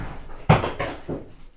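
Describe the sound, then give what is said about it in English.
Dogs roughhousing noisily, heard as three quick loud thumping, scuffling bursts about a third of a second apart, the first the sharpest, fading into a low rumble. “My dogs are murdering things apparently.”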